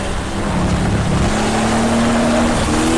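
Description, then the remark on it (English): A race car engine roars loudly as the driver goes hard on the throttle and the car tries to step sideways, its pitch climbing steadily over a few seconds amid heavy rushing noise, with no voices. “Hard on the throttle there as it tries to step sideways on me there.”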